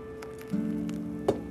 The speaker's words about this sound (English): Pouring that first delicious cup of coffee. Oh, it just makes me melt.